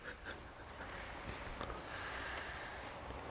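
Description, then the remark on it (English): Heavy breathing from two people together in the wide open space of a store, a soft continuous rush of air with no voices, music or sound effects, faint against a low background hum. “Again, the silence, the no music, the heat building, no sound effects or anything, just these two people breathing together in this wide open space of this store.”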